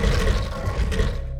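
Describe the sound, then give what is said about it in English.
Several players let out a loud, sustained battle cry together as they push open the doors, a rough roaring shout that holds for over a second, dips briefly, then surges again before ending. “Battle cry.”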